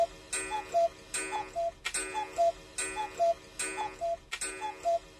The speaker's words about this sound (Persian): صبح روز بعد، ساعت فاخته روی دیوار که بین در جلویی مغازه و پنجره کنار پیشخوان بود، ساعت 8 را اعلام کرد.